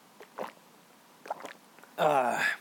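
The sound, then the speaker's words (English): A few soft, wet gulps from a sip of water, spaced out over a couple of seconds, followed by a louder, drawn-out voiced exhale after swallowing, recorded with a microphone close to the throat. “I realize that when I take a sip of water, considering my microphone is so close to my throat, you guys do hear me take gigantic glugs of water.”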